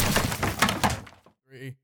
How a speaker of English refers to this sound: Note to self, don't fucking slam the desk.